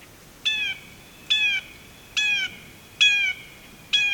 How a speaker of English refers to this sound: And for the years I've been recording birdsong for, it's been rare for me to find a place where the call of the blue jay echoes quite like this.